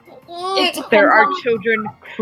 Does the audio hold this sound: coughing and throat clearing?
no